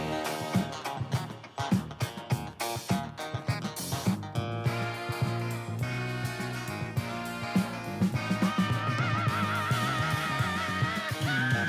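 A funk groove with a bright horn section blaring sustained, punchy chords over driving drums and bass during the song's bridge, loud, with no voices.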